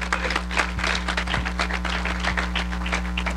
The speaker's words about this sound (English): Would somebody give the Lord a hand clap of praise?